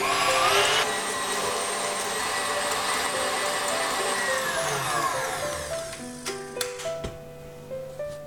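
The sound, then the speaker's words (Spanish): An electric mixer whirs steadily and loudly while whipping egg whites that were first warmed with sugar in a bain-marie. Its motor whine holds a constant pitch before shifting and wavering in speed toward the end. No one speaks. “Y ahora monto las claras.”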